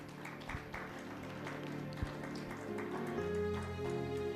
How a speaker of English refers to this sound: Give a hand clap of praise for those who are online.